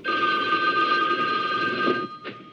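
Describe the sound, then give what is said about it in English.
A telephone bell rings in the office of the Attorney General in a film scene, a sustained, bright metallic trill with steady high tones, cutting off after about two seconds, followed by a brief faint clatter. “They cut to the office of the Attorney General, and they get a call.”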